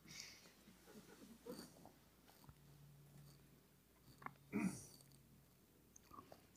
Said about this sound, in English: Now start chewing it slowly. Mindful of taste and flavor, smell. And take your time chewing.